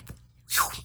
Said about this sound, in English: I have no idea what that was. That was a yawn.